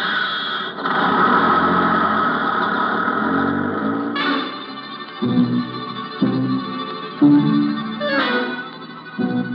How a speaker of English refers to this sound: Honey and I stand there like a couple of outfielders watching one sail over the fence while Colonel Lucius Porteous drives away in Acme's dinky little sightseeing bus.